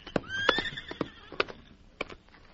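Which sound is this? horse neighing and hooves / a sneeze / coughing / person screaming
horse neighing and hooves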